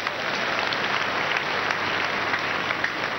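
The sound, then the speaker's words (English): An audience claps for Jesus steadily, a dense wash of many hands at a constant loud level, with faint voices mixed into the applause. “Yes, let's clap for Jesus.”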